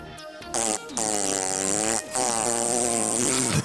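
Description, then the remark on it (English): Loud, buzzy fart noises into a regular toilet after eating Taco Bell, in three bursts: a short blast, then two long, rasping, droning stretches with a wavering pitch, with no talking. “Here's what a regular toilet would sound like after some Taco Bell.”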